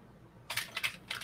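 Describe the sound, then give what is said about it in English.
Several quick key presses clatter on a keyboard wired up to an RP2040 in an irregular burst, starting after a brief quiet moment, with no voices. “I wired it up and I'm getting the key presses.”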